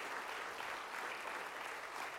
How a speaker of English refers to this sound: Can you give a round of applause to the Hispanic worship band? Excellent. Excellent.